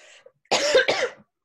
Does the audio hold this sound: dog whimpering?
no